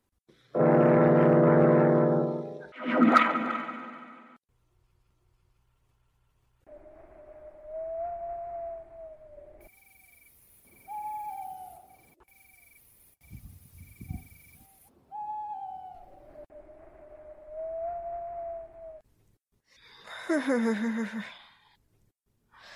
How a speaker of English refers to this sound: That wind. It sounds like a lost soul wailing.